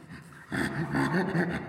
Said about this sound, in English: Chimpanzees, their laugh is on the inhalation and the exhalation, and it's kind of a panting sound. So it sounds kind of like...